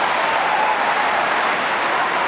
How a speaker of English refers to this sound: A frustrating start for de Minaur on centre court, Rublev capitalising to claim the opening set. But it didn't take long for the demon to get the crowd roaring again.